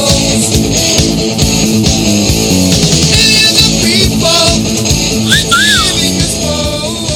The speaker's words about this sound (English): Hear that? You cat calling me and shit? That was a whistle. I'm going to do it again.